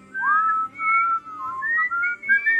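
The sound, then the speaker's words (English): A person whistles a melodic tune in a series of smooth, sliding notes, clear, with short pauses between phrases and no talking; it is Doc, dressed in gray, whistling as he arrives to confront the Cowboys and goes into the corral. “They were all dressed in black while Doc was in gray and whistling.”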